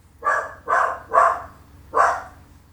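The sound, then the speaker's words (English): A female dog barks four times in quick succession, three barks close together and a fourth after a short pause, clear with no talking. “Dog is barking.”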